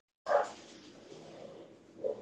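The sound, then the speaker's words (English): A dog lets out a sharp, fairly loud bark, followed by a steady low whining and whimpering, then another short bark near the end. No one speaks. “is there any way you could put the dogs to sleep for a moment?”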